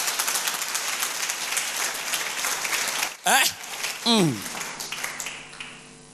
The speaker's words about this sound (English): Are you not clapping? Are you not in church?